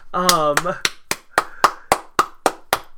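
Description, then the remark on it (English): A single person claps steadily, about ten sharp claps in an even rhythm, with a brief vocal sound at the very start. “I'm not applauding Green Book, everyone.”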